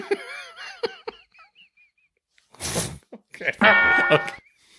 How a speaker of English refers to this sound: Each time I have to copy and paste the quack from this part in the timeline and then to this part of the timeline.